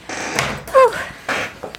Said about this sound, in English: Excuse my squeaky chair. It's driving me crazy. I cannot. I didn't even notice it until you just said something. It's driving me nuts. Sorry. I'm sure everyone can hear it.